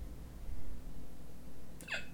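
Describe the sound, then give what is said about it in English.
A voice mimics a woman's hiccup with one short, squeaky, high-pitched 'hic' near the end, after a stretch of quiet low background rumble. “That's her hiccup. I get that. Mine that's her hiccup. What does mine sound like?”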